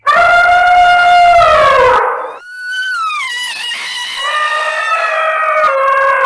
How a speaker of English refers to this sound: What was that? Sounded like Zell's elephant.